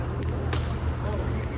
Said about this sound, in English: It's a good slap. Solid contact, I have to say.